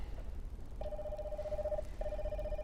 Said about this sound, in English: Oh, it's a phone. It's a phone, all right? Let's see. Oh, I see that I can call Dad or Mom or Grandpa or Grandma or a friend.